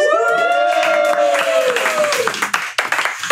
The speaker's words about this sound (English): Yay! All right. Applauded for ourselves.